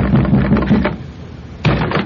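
A fist pounds hard with all its might on a front door at the top of some steps: a quick run of heavy, booming thuds, a brief pause, then one more loud blow. The knocks are forceful, with no voices.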